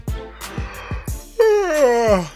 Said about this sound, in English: It is definitely not late enough to yawn. No. It is always late enough to yawn.